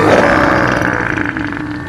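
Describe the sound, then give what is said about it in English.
A giant octopus makes a loud, raspy blast mixing a snort, sneeze, burp and fart into one continuous two-second noise, gurgling, easing off slightly toward the end. “It was a snort. A sneeze, a burp, and a fart all at once.”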